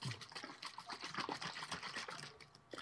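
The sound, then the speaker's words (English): Water mixed with BCAAs sloshes rapidly inside a closed water bottle being shaken, a continuous churning splash with quick rhythmic pulses, fairly loud, with no voices. “I'm shaking up my water.”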